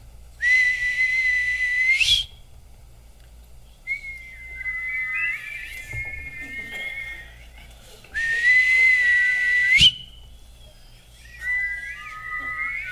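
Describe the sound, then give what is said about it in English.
A person whistles a sliding, wavering tune, broken up twice by short, loud bursts of a steadier, buzzier tone. It's clear, with no talking. “But, you know, I'm looking for a whistler who can sort of dual whistle with me.”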